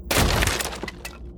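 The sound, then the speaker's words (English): A loud crash as a bedside unit, thrown at a wooden door, smashes apart, a burst of breaking followed by a brief scatter of small pieces clattering and tinkling, with no voices. “He threw the bedside unit at it, more out of frustration than anything, and it had shattered into so many small pieces.”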